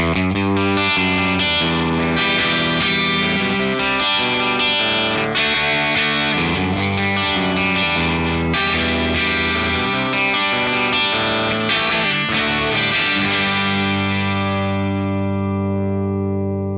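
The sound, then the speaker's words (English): A distorted electric guitar plays a chugging riff straight into a Marshall SV20H tube amp, thick and saturated with sustained chords and rhythmic palm-muted bursts, ending on a long ringing chord that fades out. “So this is straight into the Marshall SV20H.”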